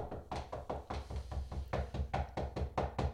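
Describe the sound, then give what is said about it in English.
A steady series of about a dozen firm knocks on the wooden door of a manor, evenly paced, each a dull hollow thud with no voices. “I'm knocking on the door. Knock, knock, knock.”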